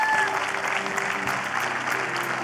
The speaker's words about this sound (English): Can we just give God a hand clap of praise in this place this morning?